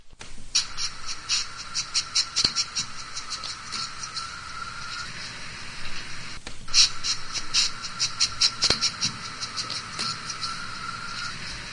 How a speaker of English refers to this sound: So the whole video is this pangolin pretty much sniffing around his new enclosure, and it's mm-hmm. the cutest thing ever.